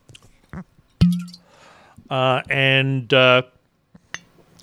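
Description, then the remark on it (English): Three large ice cubes clink against a glass, a brief hiss of Four Pillars rare dry gin pouring follows, then a voice makes three drawn-out glugging sounds imitating the pour, fairly loud. “And because of that, I'm pouring a gin.”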